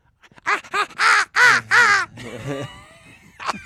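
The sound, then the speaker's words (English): A man's voice imitates a crow, giving a quick run of about five loud, harsh caws, followed by a lower, drawn-out croak and one brief final call. “We can crow with our voices.”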